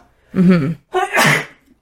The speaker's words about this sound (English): Oh, maybe I am allergic to pumpkins. That's the second time I sneezed around these pumpkins.